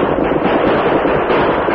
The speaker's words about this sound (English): As the Lone Ranger and Tonto opened fire and galloped toward them, the 3 Indians turned and rode hurriedly back over the hill.